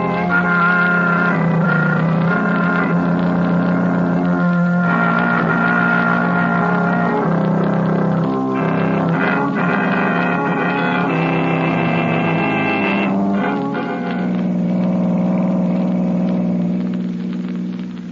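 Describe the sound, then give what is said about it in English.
A car engine runs steadily throughout, a loud, continuous low drone with a humming, slightly wavering tone and no voices over it. Margot is driving the car. “Slow the car down, Margot.”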